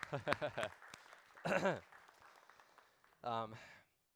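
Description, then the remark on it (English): A crowd breaks into a round of applause for the speaker's wife, whose due date is today, a steady wash of clapping carrying on for a few seconds while voices and a couple of cheers ring out over it. “today's her due date, and she is in here, so let's give her a round of applause, right?”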